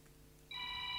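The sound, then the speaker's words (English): A telephone starts ringing partway through, a steady electronic ring with bright harmonic tones over a low room hum, clear, with no one speaking. “Ah, phone.”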